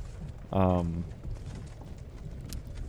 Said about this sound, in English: Well, we're in Kazakhstan this week, and that's why you hear this horse carriage going on.